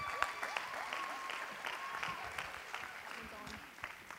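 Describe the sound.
An audience applauding steadily to welcome a speaker to the stage, a dense wash of clapping hands with a few scattered voices mixed in, sustained at an even level for several seconds.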